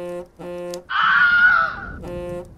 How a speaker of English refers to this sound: Ah, that's the Scream Machine, our handy guide to a person in peril. Sounds like we've got a call for help.